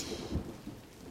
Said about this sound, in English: Then the rain began to fall on the tree and water that dropped from the leaves.